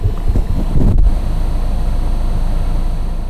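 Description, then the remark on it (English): A Jeep's engine rumbles low and steady as it rolls slowly into a parking lot next to a fireworks stand, with a brief thump early on and a constant wind-like hiss over the drone. “But I'm pulling my Jeep into a parking lot next to a fireworks stand in the same area.”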